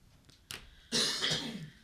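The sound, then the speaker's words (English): A person coughs: a short catch of breath, then one loud, harsh, rasping cough that trails off raggedly, with no talking. “She was waiting for you to stop coughing.”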